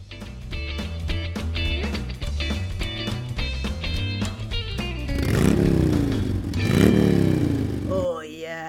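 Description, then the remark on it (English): A motorcycle engine roars with a steady low rumble, then revs up twice in rising, sweeping surges before cutting off, leaving a brief warbling tone. “I roar down the streets.”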